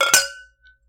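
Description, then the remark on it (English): A single bright clink of two wine glasses touching in a toast, with a clear ringing tone that lingers and fades over half a second, followed by a faint second tap. “I can tell, like, lime and green apple, and we definitely need to cheers so I can try this wine. Yes, we do. Cheers. Cheers.”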